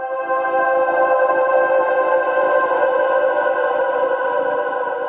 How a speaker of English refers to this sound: I think, yeah, it's definitely organic with this kind of almost like digital static, like granular.